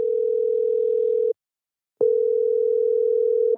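A telephone line tone: a steady, pure electronic hum sounding in two long bursts separated by a short silence, loud, with no one talking.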